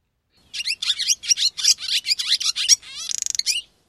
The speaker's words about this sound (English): That was the most common and probably the most recognizable of all of our swallows. The barn swallow. The barn swallow has almost a constant liquid chattering twitter.